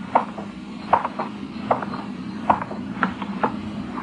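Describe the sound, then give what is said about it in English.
Hard-soled footsteps click and echo along a dark, deserted street at a steady walking pace, about eight sharp steps over a low background hum, with no one speaking. “My footsteps echoed in the quiet street.”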